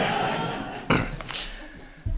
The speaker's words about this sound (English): And I'll take a swig of water to leave you all in suspense at that point.